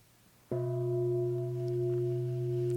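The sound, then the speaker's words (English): One strike of a meditation gong at a meditation retreat after a moment of quiet, its deep, steady tone ringing on evenly with layered overtones and no voices alongside. “Would you give one ding on the gong?”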